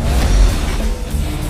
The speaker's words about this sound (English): This is our cop car! This is our cop car! See how fast we can go.